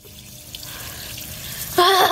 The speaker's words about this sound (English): Water fight.